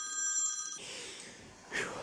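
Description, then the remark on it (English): A phone rings with an incoming call from Julia, a bright, steady electronic tone for under a second, then cuts off into a soft hiss of background noise and a brief rustle. “Julia's calling me.”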